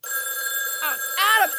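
A telephone rings with a steady, continuous electronic tone, joined partway through by two brief, warbling voice-like sweeps layered over the ring.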